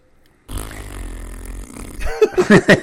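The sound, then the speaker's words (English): A person blows a long, buzzy raspberry with their lips, imitating a fart, for about a second and a half, then breaks into a few loud, rhythmic bursts of laughter. “because, you know, you blowing fart noises is a hell of a lot better than me doing it.”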